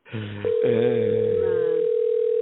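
A steady, unbroken telephone ringing tone of an unanswered call sounds after a brief moment, holding an even pitch to the end while a voice talks over its first part.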